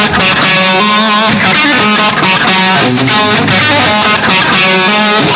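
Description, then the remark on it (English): A loud, distorted electric guitar, heard as an isolated track from a recording without production or reverb, rings out natural harmonics, with bright, chiming overtones sustaining and shifting over a thick, continuous tone, played alone with no voices. “Without the production and reverb, natural harmonics.”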